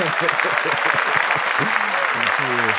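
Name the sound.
applause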